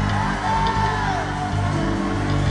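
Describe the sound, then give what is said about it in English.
A church audience shouts amen and whoops together, loud, with rising and falling cries cutting through a continuous roar of many voices for the whole stretch. “And the people of God shouted, amen.”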